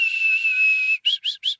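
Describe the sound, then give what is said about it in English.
A clear, sweet bird song: one long, steady whistled note, then three short rising notes in a quick, lilting rhythm. It is bright, high and fairly loud, with no voices. “Just this very sweet, lilting song, this.”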